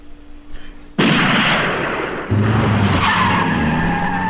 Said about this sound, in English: That's right, all it takes is one gunshot in Redneck Valley when you're an African-American for you to peel the fuck out of there.